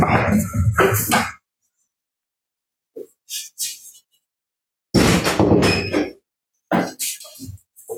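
A door being closed, heard as loud clanking, rattling bursts separated by silent gaps, with a few softer knocks in between and a final heavy clunk. No one speaks.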